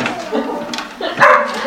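A dog barks in short, yappy bursts, the loudest coming near the end, with a faint murmur underneath.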